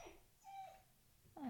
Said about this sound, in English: The dog is whining.